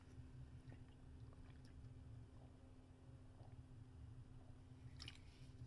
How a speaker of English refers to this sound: Sorry, y'all, I had to drink some water. Because I had some pork rinds before I came on air. And I'm drinking some water.